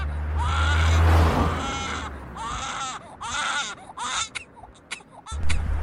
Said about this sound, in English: The sound of a baby crying isn't usually heard alongside the sound of cars driving past.